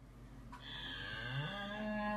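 A cow lets out one long, drawn-out moo, loud and close, its low droning tone swelling slightly in pitch partway through and holding steady to the end. No voices.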